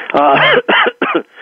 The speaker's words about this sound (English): I'm coughing here